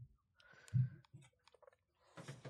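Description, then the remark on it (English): Someone takes a sip of hot coffee, with a soft clunk and small clicks, followed by a brief airy slurp. “Let me take one more sip of coffee.”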